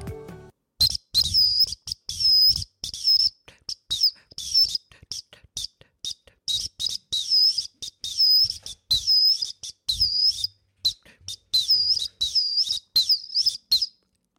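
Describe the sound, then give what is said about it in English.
A shrill, high-pitched whistle, an orange Acme 212, plays a quick tune of repeated short blasts and trilling notes, loud and steady in rhythm, with brief breaths and small gaps between phrases. “So instead, I'm going to play you a tune on my Acme 212.”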